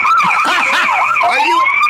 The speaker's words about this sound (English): Sirens about to get lit up.